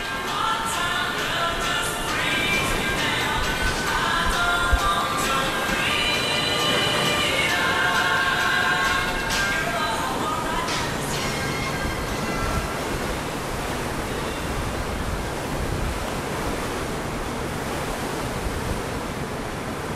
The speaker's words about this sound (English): Over to England then, and then we just waited on the train then. The train went directly from Holyhead to London.